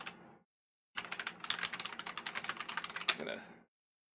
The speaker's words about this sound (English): Of course, this big long stretch of dead air and me typing on a mechanical keyboard is what people do.